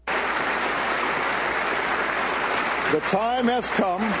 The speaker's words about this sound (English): That's the applause at the UN for rejecting when he said that we can't have Israeli settlements. That's the applause at the UN.